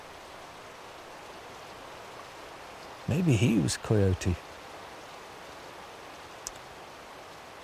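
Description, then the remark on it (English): A steady, even rush of water flowing in an old river fills the whole clip at moderate level, and a man speaks briefly over it partway through. “So here I am, sitting by this old river.”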